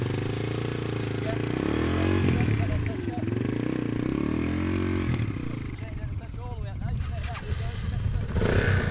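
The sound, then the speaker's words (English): A motorcycle engine revs steadily during a riding lesson, its pitch climbing and dipping as it pulls away with a little more gas, a continuous mid-toned rumble with a person talking over it. “So a little bit more gas, and remember to ease that all the way out.”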